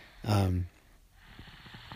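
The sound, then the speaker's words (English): A sick pet, Philip Charles Bat Ray, lying in bed with a viral illness, snores once: a loud, low, buzzing rattle with a breathy hiss lasting under half a second, followed by quieter, faint rustling and murmuring. “So just laying here relaxing and listening to him snore.”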